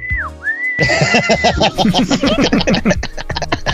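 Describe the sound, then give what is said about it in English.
A loud whistle swoops down and back up, then holds briefly before breaking into a dense, crackling burst that mimics a crowd's applause, all produced by one person's mouth. “I like did this like weird whistle applause thing.”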